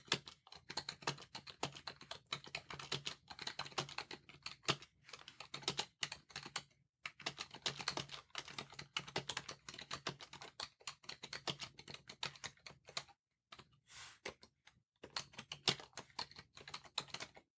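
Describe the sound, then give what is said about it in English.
Steady, rapid clicking of keys on a computer keyboard, typing over a selected word, continuous with a couple of brief pauses between bursts of typing. No voices. “And I'll go ahead and type.”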